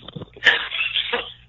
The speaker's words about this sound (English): No, I didn't puke. I just had to cough really hard.